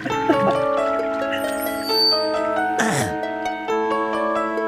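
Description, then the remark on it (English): An instrumental song opening a musical theme, with sustained, bright tonal notes forming a melody. A brief swooshing burst with a falling sweep cuts in partway through, then the melody carries on. No voices. “So I want to play this next clip, this entire like first song, so that I can get the two music experts, to, chime in on your feedback on it.”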